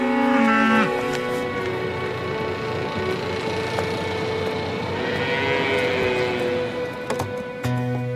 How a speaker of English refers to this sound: Cows! Come on, cows! Come on, girls! Let's go! Hey, you cows!